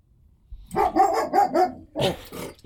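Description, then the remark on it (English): A dog barks repeatedly from inside the ceiling in a quick series of about six or seven sharp, mid-pitched, clear barks, with no one speaking over it. “I don't even own a dog. That just happened in the ceiling.”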